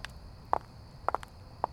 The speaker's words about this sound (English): And every night I'd leave and I'd walk through the empty lot to my car. You ever listen to your footsteps sometimes in an empty space? I don't know about you, but for me it's almost like I was waiting to hear another set.